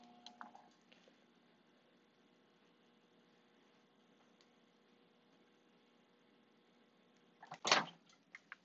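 A quiet room hum runs for several seconds, then a door is opened to check that eggs are being kept warm, with a short burst of clatter and rattle near the end, followed by a couple of faint clicks.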